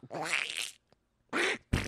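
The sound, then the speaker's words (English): A voice imitates a duck fart with a long, buzzy raspberry, followed after a short pause by two quicker sputtering bursts, loud with no words spoken. “Oh, that's a duck fart?”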